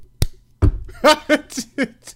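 A voice imitates a secret knock rhythm: a sharp click and a low thump, then five short, evenly spaced voiced beats of moderate loudness, with no other talk.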